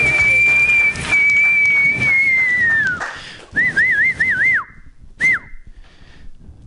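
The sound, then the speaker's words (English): Loud whistling straight into a microphone by a comedian at a comedy show: a long held note sliding gently downward, then a quick wavering trill of rising and falling notes, ending with a short chirp, with crowd noise murmuring underneath. “Just whistling straight into the microphone.”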